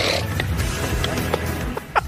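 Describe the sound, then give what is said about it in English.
A rough, guttural throat-clearing hawk, like someone working up a loogie, rasping steadily and then ending in a couple of short, sharp bursts, over a low background hum. Golfer Tiger Woods hawks a loogie on a live broadcast shot at the Genesis Invitational at Riviera. “And did he just hawk a loogie?”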